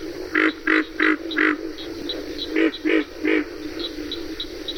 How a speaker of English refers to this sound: Well, the most prominent frog, I believe, in Okefenokee, the one that everyone hears, you can hear it day and night, is the pig frog, which grunts like a pig.